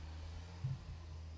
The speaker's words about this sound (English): As the truck passes by.